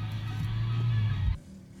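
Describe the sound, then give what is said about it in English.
A sports car engine rumbles loudly in a steady, deep drone, then cuts off abruptly to near quiet just before the end. “Sounds like a Porsche, right?”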